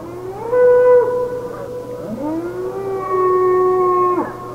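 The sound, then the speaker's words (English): Coyotes, out hunting, howl in two long, wavering calls, each sliding up in pitch and then holding a steady, reedy tone. The howls are fairly loud, with no talking. “Now, all the coyotes know where everyone is and perhaps from that alone what they are about to do.”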